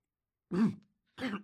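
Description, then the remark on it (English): A person mimics someone coughing into a rag: two short, rough, throaty bursts separated by a brief pause, with no talking around them. “he's like coughing into his rag.”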